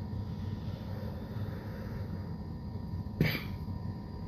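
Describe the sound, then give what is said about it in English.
A person who has just taken a hit of smoke lets out a single short, sharp cough near the end, set against a steady low rumble of background noise; no one speaks. “One cough. Two cough.”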